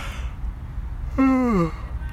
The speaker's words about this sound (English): Sorry, y'all, I'm yawning.